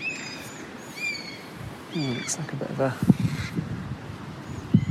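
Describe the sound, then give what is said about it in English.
Several crows caw in harsh, repeated bursts overhead while chasing away a bird of prey, mixed with higher thin calls, while a man talks, on a walk through a forest. “Crows chasing away a bird of prey.”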